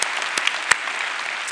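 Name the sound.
audience applause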